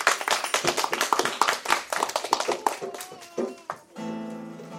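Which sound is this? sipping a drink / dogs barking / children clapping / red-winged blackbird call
children clapping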